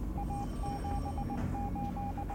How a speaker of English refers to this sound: On the ground at Santiago's airport, a radio operator received a Morse code message from the Stardust. The communication was ETA Santiago, 1745 hours.